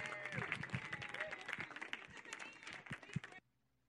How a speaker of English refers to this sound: Let's just give them and God another great big round of applause.